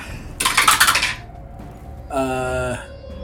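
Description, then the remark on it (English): Dice rolled for an attack in a tabletop game clatter and rattle across a hard tabletop in a quick burst lasting under a second, followed by a short voiced sound. “Ran right out of the dice.”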